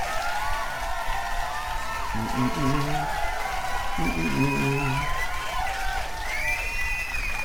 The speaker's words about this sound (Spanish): Un pinche aplauso, ¿cómo no?